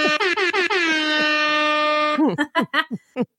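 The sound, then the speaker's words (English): A loud hip-hop air horn sound effect: a rapid string of short blasts runs into one long sustained blare, followed by a few choppy bursts near the end. “Yeah, Hip-hop thank you. Air horns.”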